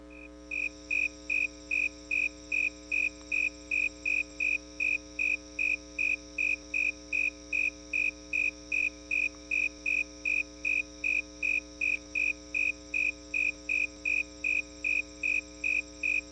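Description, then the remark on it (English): A snowy tree cricket (Acanthus fultoni) chirps in a steady, evenly spaced rhythm, about three clear, high chirps per second, repeating without pause over a faint constant hum, with no voices; songs of a warm male followed by songs of a very cold male. “Snowy tree cricket, Acanthus fultoni. Songs of a warm male followed by songs of a very cold male.”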